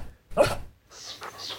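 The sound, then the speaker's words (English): A small golden retriever named Anna pants in a few quick, breathy huffs, with a louder burst first and softer, rapid breaths after. No one speaks. “She was a small golden retriever who loved to play.”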